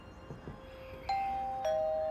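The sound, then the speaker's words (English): A two-tone doorbell chime at a single-story house on West 7th Street in Roswell, New Mexico, rings out clearly, a bright ding at about one second followed by a slightly lower dong, each tone sustaining and ringing on against a quiet indoor background. “The doorbell chimes right on time.”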